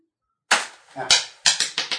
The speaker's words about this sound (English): Keep dropping my dice.